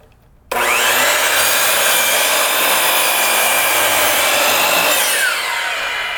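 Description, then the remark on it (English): A saw cuts steadily through wood along a pencil line, starting abruptly with a loud, continuous, hissing whine that holds for about five seconds before easing slightly at the end. No one speaks. “Put your blade down, it'll show you where that line's going to go.”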